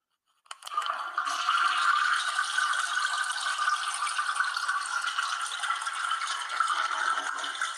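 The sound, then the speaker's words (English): A toilet flushes with a sudden start, then a steady, loud rush of water that keeps going for several seconds. No one speaks. “So we're going to flush him right now, man.”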